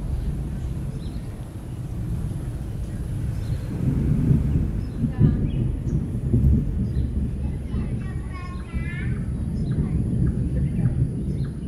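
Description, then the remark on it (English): A deep, continuous rumble of thunder from a thunderstorm in Singapore, getting closer, rolls on throughout, swelling slightly midway, while small birds chirp and trill faintly over the top. “The thunder sounds like it's getting closer now.”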